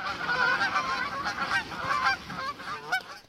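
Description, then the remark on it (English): A flock of geese honks noisily and continuously, their harsh overlapping calls filling a few seconds with no other sounds. “That'll do, geese. That'll do.”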